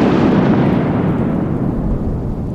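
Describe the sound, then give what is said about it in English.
A loud, deep thunderclap from a positive lightning bolt, a smooth, positively charged bolt with no branches, rolls on as a heavy, sustained rumble, booming and powerful before slowly fading over a couple of seconds. No voices accompany it. “It's called positive lightning. And that's a smooth bolt with no branches. And it sounds like a bang.”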